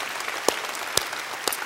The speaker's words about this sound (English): Hey, there were just a ton of people that raised their hands. Would you applaud every one of them?